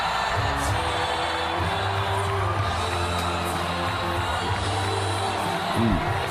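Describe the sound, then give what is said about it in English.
A huge crowd of thousands in Cleveland screams, cheers and sings along in a dense, unbroken roar as Donald Trump makes his entrance, with sustained musical or sung tones running low beneath the din and a brief swell near the end. “There's thousands of people in Cleveland screaming.”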